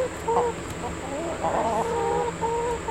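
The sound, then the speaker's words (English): Several chickens in a garden chicken coop cluck and chatter in short, overlapping calls against a steady outdoor hum with a faint high whine running throughout. “And there's a chicken coop.”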